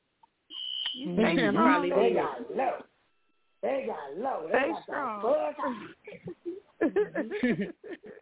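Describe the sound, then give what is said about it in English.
A shrill, steady hotel building fire alarm tone sounds at the start, then loud, agitated voices take over with brief pauses, the alarm fading into the background under the commotion. “That alarm went off and they got low.”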